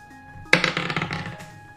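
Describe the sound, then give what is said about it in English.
A die rolled on a table for a move during a game hits with a sharp clack, then rattles through a quick run of smaller bounces and tumbles that fade as it settles on 19, over a faint steady hum. “Okay, you still have to roll for that. Oh, right, yeah, I still do.”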